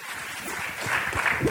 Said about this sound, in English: You guys are really good at applauding, by the way. That was good.